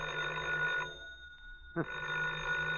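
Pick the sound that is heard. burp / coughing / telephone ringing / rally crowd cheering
telephone ringing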